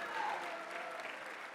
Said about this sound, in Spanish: Alguien dele palmas a Dios. Alabado sea Cristo Jesús.